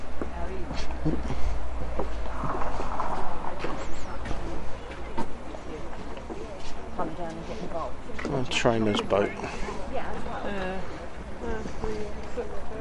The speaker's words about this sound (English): Oh, the foot ferry is working today. Last time we came down here, it wasn't working.